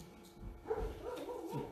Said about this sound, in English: Dog agrees. See how that works? Even the dog is agreeing with me. This is bad when the animals start to agree with me. Again, he's telling me to preach it.